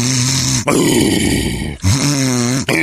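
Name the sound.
imitated loud snoring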